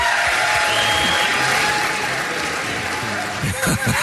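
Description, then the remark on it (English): A crowd at an ugly sweater contest applauds steadily for about four seconds, a loud dense wash of clapping with scattered cheers and whoops mixed in, holding strong before easing slightly at the end. “A round of applause for all our ugly sweater.”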